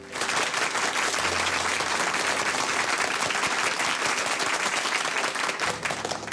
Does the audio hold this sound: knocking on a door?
no